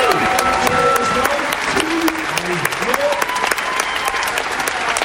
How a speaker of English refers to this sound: So get off your arse, stand up, and take a round of applause. You've spent 20 years supporting us. Thank you very much. Come on, guys, stand up.